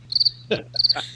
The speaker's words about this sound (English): Cricket. Cricket.